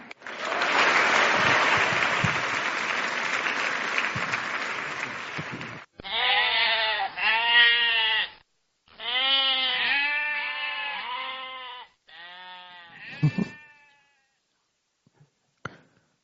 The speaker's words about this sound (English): Those are some goats. Some thinking and feeling goats.